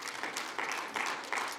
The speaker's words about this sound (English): Give the Lord another hand clap of praise tonight.